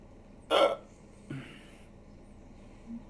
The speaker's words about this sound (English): Hiccup.